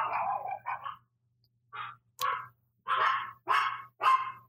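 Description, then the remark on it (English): Dogs bark right outside a door in short repeated bursts, a couple of quick yips followed by a run of loud barks with brief pauses between them, over a low steady hum. “I'm just waiting for the dogs to stop barking.”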